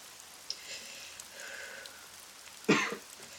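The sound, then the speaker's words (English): Steady rain hisses softly and continuously in the background, with a brief, louder rustling burst near the end rising above the patter. “Amidst the pelting rain, she also heard the sound of breathing.”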